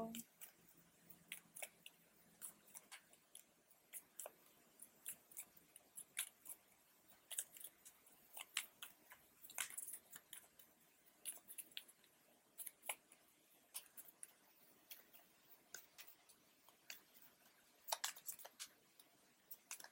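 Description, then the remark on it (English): Cards are shuffled: a steady run of crisp, papery snaps and flicks, irregular and quick, with brief louder bursts of riffling over a quiet background and no voices. “And shuffle.”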